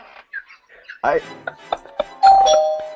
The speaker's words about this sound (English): I don't know what the doorbell has anything to do with anything.